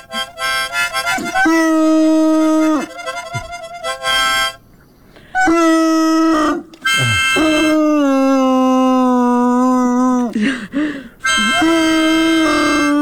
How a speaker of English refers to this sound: My brother was just playing the harmonica randomly because he was trying to learn it a little bit with my grandpa, and all of a sudden Tucker started howling away like crazy. It kind of sounded like half dog, half Wookiee. He is a hound dog after all